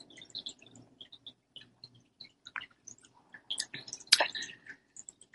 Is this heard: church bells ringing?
no